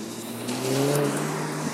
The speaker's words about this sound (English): One of the big high-powered cars leaving Old Trafford.